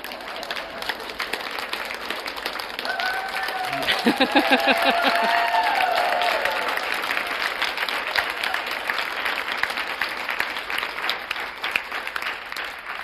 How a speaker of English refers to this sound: Really why I don't like to write Dharma talks, because nobody claps like that after a Dharma talk, which they totally deserve, right?